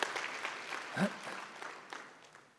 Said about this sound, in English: Let's clap for him this morning.